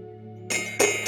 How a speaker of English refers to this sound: And before we do that, I'm going to go ahead and just set our space. I'm going to ring a bell to get us into the present moment.